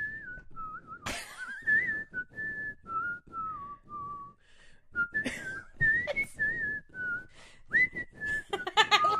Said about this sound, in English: All dogs, they hear whistles. They have to come. You know, he's by the back door. He's like, God damn it, I gotta get up. Somebody's whistling. I've got to respond.